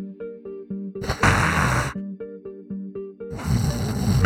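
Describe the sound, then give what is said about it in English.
A person imitates a small rodent figure snoring while it lounges on a countertop: high, wheezy whistling tones alternate with two loud, raspy, snorting breaths, in a slow repeating rhythm with no talking. “You see a small rodent figure lounging on the countertop, snoring.”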